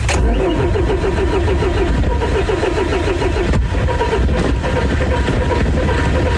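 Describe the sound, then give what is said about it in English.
A car engine cranks over and over with a rapid, rhythmic chugging, sputtering and straining without fully catching, as someone tries to start the car one morning; the car has gas in it. Loud and continuous, with no voices. “Came out the other morning, and I tried to start her up, and this is what she sounded like.”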